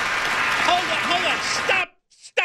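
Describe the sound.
A crowd claps steadily for almost two seconds with some voices calling out over it, then the applause cuts off abruptly, followed by brief snatches of speech.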